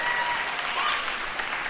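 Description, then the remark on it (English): A church audience claps steadily in a dense, continuous wash of applause for youth partners who are doing a fast, the sound staying even and fairly loud throughout with a few faint whoops or cheers mixed in. “Can we just give a round of applause for our youth partners who are doing a fast?”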